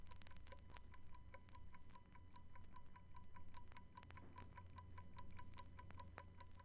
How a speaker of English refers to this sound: The rhythm of a clock's balance wheel can be heard in its steady tick-tock.